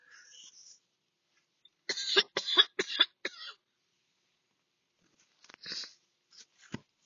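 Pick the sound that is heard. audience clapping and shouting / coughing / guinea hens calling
coughing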